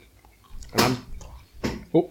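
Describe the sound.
Two loud crunches of crisp food being chewed, about a second apart, with a brief murmured voice sound right at the end.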